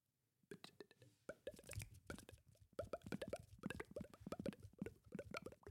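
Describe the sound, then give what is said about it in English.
A voice imitates boiling water with a rapid, irregular stream of wet mouth pops and plops, bubbling continuously for several seconds at moderate loudness with no words spoken. “Oh, it's like I was going for boiling water.”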